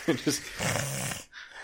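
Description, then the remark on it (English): A voice imitates raspy, labored breathing: two short rough gasps, then a longer grating, snore-like exhale, trailing off into a faint breathy hiss. “Was that one got, like, breathing problems or something? I think he's got that sleep apnea.”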